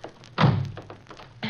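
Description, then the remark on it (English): A car door shuts with a solid thud as people hurriedly get into the car, followed about a second later by a lighter second clunk. No one speaks. “Quick, get in the car.”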